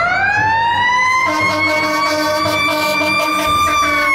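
A fire truck siren wails loudly, a steady rising tone that holds for several seconds over a rumbling engine, with no voices.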